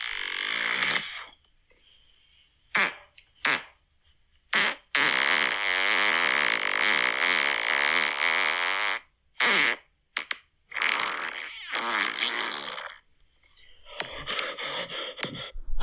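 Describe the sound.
Loud mouth-made fart noises, apparently made with the mouth on an arm: a short opening burst, a few quick blurts, then a long sputtering raspberry lasting several seconds, followed by more brief squelchy bursts and pauses.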